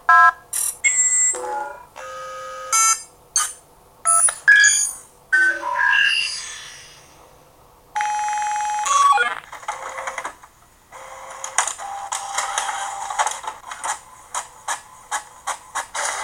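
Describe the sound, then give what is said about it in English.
A computer emits a run of electronic beeps and tones in varying pitches, then its printer whirs and chatters in short bursts as it prints out results, fairly loud, with no talking. “So all I do is I feed old programs in, and the computer sorts out the rest about what happens.”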